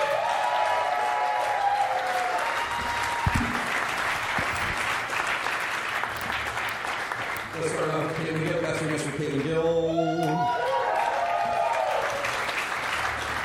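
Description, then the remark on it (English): A large audience claps loudly and steadily for performers for the whole stretch, with whoops and raised voices rising over the applause partway through. “Clap your hands.”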